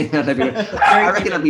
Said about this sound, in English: So there's a dog barking.